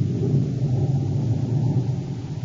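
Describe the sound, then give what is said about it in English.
A deep, continuous rumble of thunder rolls through a stormy backdrop, heavy and steady at low pitch with a hiss of rain or wind above it, and no voices. “As the storm builds in violence, Buzz and Abby stand in the darkened office shack, looking out the window toward Baccarati's small, sleek atmosphere ship.”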